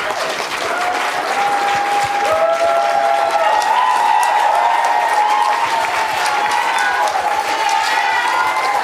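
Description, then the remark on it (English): A backstage press room crowd at the Academy Awards breaks into loud, sustained applause as Spike Lee is announced coming to the podium, dense clapping running the whole time, with excited cheers and rising whoops riding on top. “Listen to the press room after they announced that Spike Lee was coming to the podium.”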